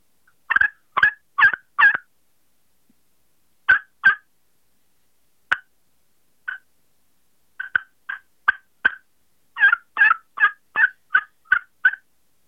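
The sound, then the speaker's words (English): Turkey clucks and short purring rolls scratched out on a slate call, coming in quick clusters of sharp, high chirps with brief pauses between groups and no talking. “So I'll do the best I can here with a few clucks and maybe some purrs from off my slate call.”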